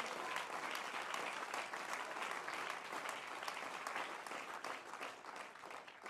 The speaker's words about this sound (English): If you have that willingness today, would you clap your hands?